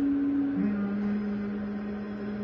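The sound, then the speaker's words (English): After a breath in, a person hums one long, steady note as a breathing exercise, dipping slightly lower in pitch early on and then holding it evenly to the end. The hum is clear and fairly strong, with no talking. “Yep, let's practice one. Hum.”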